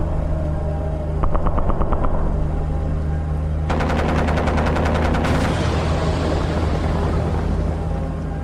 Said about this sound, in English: Jay and I watched the skies as jet fighters took down more asteroids.